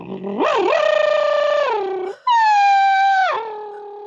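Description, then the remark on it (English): Someone vocally imitates an old Formula One car passing, showing the Doppler effect: a loud, buzzing engine whine held for about two seconds, then a second, higher whine, each ending in a falling Doppler-like pitch drop. “I can do the Doppler effect. Hang on. Any excuse to do your Formula One car impression?”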